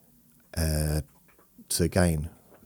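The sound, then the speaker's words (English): A dog gives two loud vocalizations: first a sustained, steady whining tone, then after a short pause a sharper bark-like yelp that trails off into another whine. “Can't take either of them out because the other one barks.”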